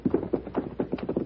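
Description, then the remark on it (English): Horse hooves clip-clop in a quick, steady series of hollow knocks, moderately loud, as riders ride up toward a ridge, with no voices over them. “Let's ride up there.”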